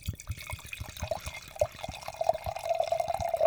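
Wine pours steadily into a glass near a microphone, a gurgling trickle whose pitch slowly rises as the glass fills, with small splashes and drips throughout and no voices.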